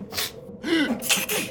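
A single loud sneeze: a quick breathy intake, a rising voiced 'ah', then a sharp hissing burst of air, with no talking around it.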